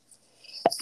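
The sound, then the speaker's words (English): A single sneeze: a short, sharp burst of breathy noise followed by a brief airy hiss as it trails off. No talking is heard. “Excuse me. Bless you.”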